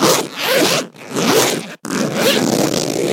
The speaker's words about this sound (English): Oh, I guess I'll just get my jacket then. Let me just try and do it up. It's really tricky. Why can't I... Hang on, there are more zip noises than even the noises I was making. What's going on?